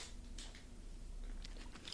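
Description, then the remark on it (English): Quiet chewing with a few crisp crunches spaced irregularly, as someone bites into and munches on a snack. No one speaks. “I'm just a little hungry right here today.”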